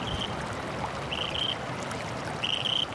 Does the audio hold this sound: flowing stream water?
yes